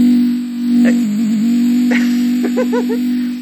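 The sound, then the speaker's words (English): A device vibrating on its third setting: a continuous, steady low-pitched buzz that wavers briefly partway through, with a few faint higher chirps and squeaks over it. “Here's vibrate number two. A little louder. Vibrate number three.”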